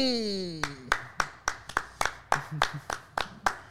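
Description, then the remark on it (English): A falling, sliding tone fades out as a run of about eleven sharp, loud hand claps begins, landing in a fairly steady rhythm of roughly three per second. “Clap that up.”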